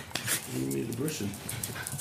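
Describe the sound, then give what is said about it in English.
A dog at a family home in a peaceful part of the countryside in Clare whimpers with a thin, wavering whine, mixed with short breathy pants, moderately loud for about two seconds. “Conor lives in a peaceful part of the countryside in Clare with his wife Zara, their toddler, and dogs Coco and Buster.”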